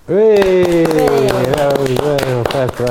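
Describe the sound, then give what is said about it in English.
A burst of scattered clapping from a few people, fairly loud, runs the whole way through while a voice holds a long, drawn-out cheer over it. “And I think that is worth a round of applause for the son of the goddess staying awake on the train because he was so fed up with it.”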